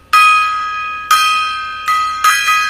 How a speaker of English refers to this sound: And we've got a gong here too.